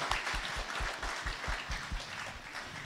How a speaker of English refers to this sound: Come on, give God a big round of applause. Thanks, guys.